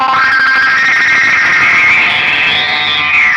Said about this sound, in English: There's a delay with a filter sweep on there. Then there's a ring modulator, another filter, then the distortion, then the amp, then a verb.